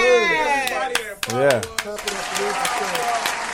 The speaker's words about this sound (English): Hey, y'all, let's clap it up for these people. Yeah. All our clients.